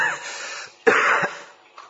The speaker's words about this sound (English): Have any medicine for cough? I'm getting a cough.